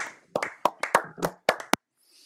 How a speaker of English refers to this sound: Hey man, it's time. Standing O time, baby.